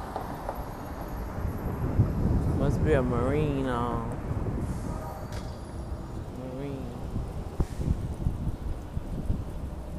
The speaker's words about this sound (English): But anyway, let this buses pass. It's loud.